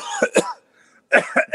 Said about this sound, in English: Hold on 1 second. I got to cough my brains out here.